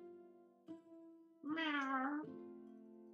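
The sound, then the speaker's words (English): A person imitates a cat with a single drawn-out, wavering meow, loud, rising then falling over about a second against a steady low hum. “Meow.”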